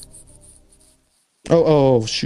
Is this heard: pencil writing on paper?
yes